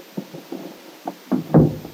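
The door of a shabby little cottage being opened: a few soft taps and clicks, then a heavier clunk and rattle as it swings, with no voices.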